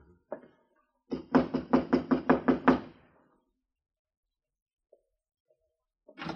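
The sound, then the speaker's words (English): A quick, even series of about eight firm, loud knocks on the wooden door of room number 9, followed by quiet with a few faint thuds and a brief sound at the end. “Well, this is number 9. Go ahead, Temple. Knock.”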